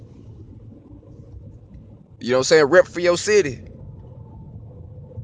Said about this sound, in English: I see a bunch of motorcycles.